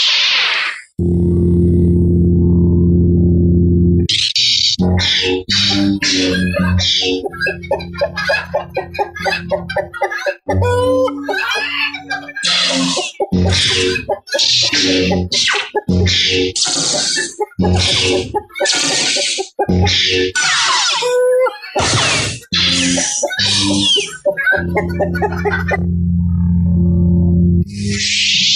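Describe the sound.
A lightsaber-chicken sound effect: a steady low electric hum opens and closes it, while the middle is packed with loud, rapid clucks, squawks and grunting bursts layered over buzzing saber swings.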